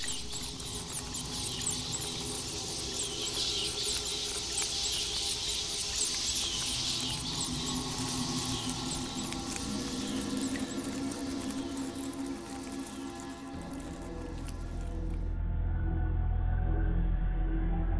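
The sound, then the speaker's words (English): Rats scurrying inside walls, racing behind the padding of a room, in a Jabberwocky Audio Theater production of H.P. Lovecraft's The Rats in the Walls: a dense, continuous patter of tiny scratching claws with faint squeaks, steady throughout, before a deep low rumble swells up at the very end. “The demon rats that race behind the padding in this room and beckon me down to greater horrors than I have ever known.”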